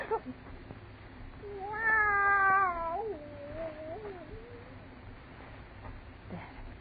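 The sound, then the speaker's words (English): A cat yowls loudly, a long drawn-out wail that rises and then wavers downward over a few seconds, with a quieter trailing cry afterward, in an otherwise quiet house. “That cat.”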